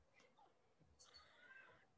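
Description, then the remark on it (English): A cat meows faintly, a short cry followed by a longer, drawn-out meow, with no talking. “I'm sorry, my cat's like...”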